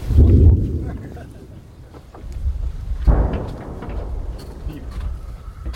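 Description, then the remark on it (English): A heavy artillery gun fires a shell with a deep, rumbling boom, then a second sharp blast about three seconds later, each trailing off into a low, rolling echo. “Such a shortage of shells here. They get to do that, if they're lucky, about 10 times a day.”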